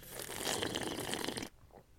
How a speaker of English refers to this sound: is about to take a sip of this mocktail that I made.